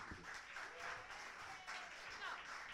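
Steady applause from an audience at a poetry reading as the next performer comes to the stage, a dense wash of many hands clapping at once, fairly quiet and even with no voices standing out.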